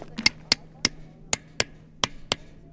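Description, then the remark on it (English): Workers with small hammers tap rocks into gaps in the stone walkway leading to Brasilia's presidential offices in Brazil, repairing damage: about eight sharp, bright clicks in an uneven rhythm, ringing briefly over a steady low hum. “With small hammers, they tapped rocks into gaps in the stone walkway leading up to the bright entrance of Brasilia's presidential offices.”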